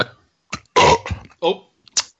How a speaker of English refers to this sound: Oh, I mean, that burp smells absolutely revolting.